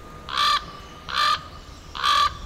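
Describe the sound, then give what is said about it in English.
Three harsh, croaking raven calls, evenly spaced about a second apart, each loud and clear against a quiet outdoor background with no one speaking. “And you used to be able to find lots of ravens, too.”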